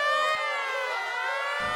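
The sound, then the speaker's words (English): A school fire alarm blares in one continuous, harsh electronic tone, loud and buzzy with a bright, piercing edge, holding steady throughout with no voices over it. “It's probably a false alarm.”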